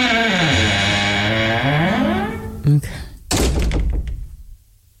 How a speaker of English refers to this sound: I'm going to go out the door and go left.